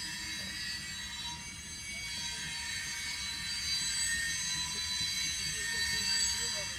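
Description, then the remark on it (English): Train wheels grind and squeal on the rails in a steady, piercing metallic screech that holds for several seconds, with a low rumble underneath and slight swells in loudness. “In a crazy train.”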